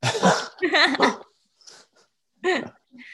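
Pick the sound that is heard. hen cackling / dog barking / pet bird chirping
dog barking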